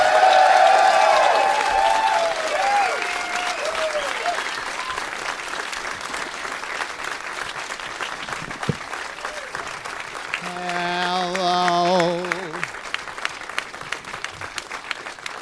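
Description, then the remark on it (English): An audience applauds steadily throughout, a dense wash of clapping with some cheering and whoops rising at the start and again near the end, welcoming Ron Funches, Jonah Ray and the establishment's owner to the stage at a live show. “Please give a big warm welcome to three fellas that are in town right now because I wanted them to be.”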